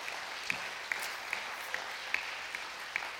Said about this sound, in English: Give the Lord a hand clap of praise.